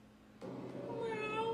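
A single drawn-out meow starts abruptly and rises slightly in pitch, fairly loud, with a faint steady hum underneath and no talking.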